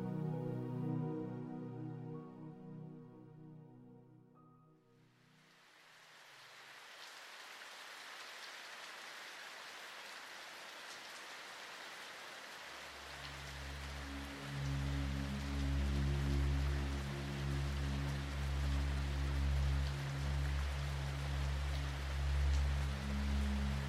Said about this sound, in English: The late summer shower patters heavily on the pavement outside. Dense rivulets of water cascade down the bakery windows, shining gold as they catch the sun, which peeks out behind large puffy clouds.